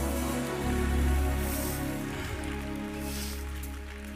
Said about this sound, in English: Clap your hands and give the Lord a praise. Come on, I said, clap your hands, give the Lord a praise.